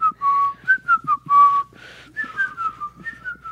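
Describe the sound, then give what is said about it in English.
A person whistles the whistle part of a song, a tuneful melody shifting between sustained notes and short bouncy phrases, clear with no talking over it. “And then there's a whistle part.”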